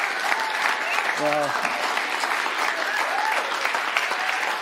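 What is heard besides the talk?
audience applause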